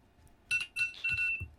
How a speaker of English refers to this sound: As my alarm goes off for no reason. What did I set that alarm for? 8 o'clock.